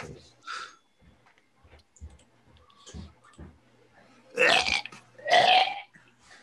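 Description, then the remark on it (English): A voice imitates a rude, burpy camel fart noise in two loud, raspy bursts near the end, after a few quieter clicks and breathy sounds, clearly heard. “Camel farts.”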